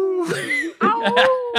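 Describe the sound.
A person vocally imitates a dog, giving a drawn-out yelping howl followed by a few quick, voiced barks in a loud, playful tone.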